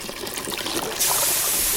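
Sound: water trickling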